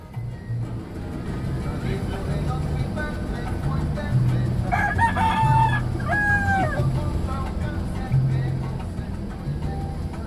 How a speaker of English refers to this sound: But the funny thing was that rooster was not that happy to be on the bus, and he cock-a-doodle-doo the entire way. And, you know, I've been recording music from Panama, so the rest of this music is going to be my bus ride with the unhappy rooster.